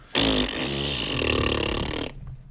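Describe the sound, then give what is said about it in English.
A single loud, buzzing raspberry made with the lips, imitating a fart, lasting about two seconds before cutting off abruptly. “Oh, no, that's just a normal length fart noise.”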